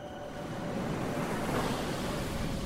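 Ocean waves wash in with the tide, a steady, rushing hiss that swells slightly midway, a continuous surf sound heard alone with no talking.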